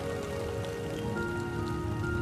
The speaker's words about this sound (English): Rain rattles and drums against rock and soil and seethes into water.